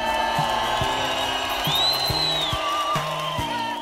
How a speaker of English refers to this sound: could we get a wild applause cue?